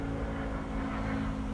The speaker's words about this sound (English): There's a plane flying over me. I'm not even going to cut that out.